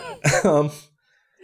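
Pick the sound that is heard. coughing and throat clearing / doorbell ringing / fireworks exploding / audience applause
coughing and throat clearing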